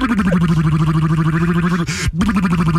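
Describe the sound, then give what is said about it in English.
A continuous vocal motorboat sound made by fluttering lips, broadcast on K-Rock 96.5, a Los Angeles radio station: a loud rapid buzzing rattle with a steady low pitch, briefly broken by a short hiss and breath before the buzzing resumes. “Bringing you the best motorboat sounds of the 70s.”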